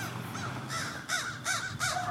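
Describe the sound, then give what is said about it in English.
Several crows caw in quick, overlapping bursts, harsh and raspy, with three or four loud calls near the end standing out over a steady background murmur of more birds. “Do you hear the birds? There's so many.”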